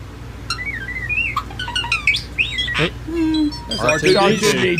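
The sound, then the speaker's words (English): A starling mimics R2-D2 droid noises: warbling electronic whistles, quick beeps and swooping pitch slides, with a low steady tone midway and a dense burst of chirps at the end. “R2D2. Adler. This is real.”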